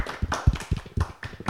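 A brief round of applause from a small group, close by: quick, uneven claps tumbling over one another for a second or two, with no one talking.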